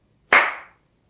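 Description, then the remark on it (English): A single sharp hand clap, loud and crisp, with a bright attack that rings briefly before fading out into silence. No voices are present. “With the clap of a hand, enlightenment comes.”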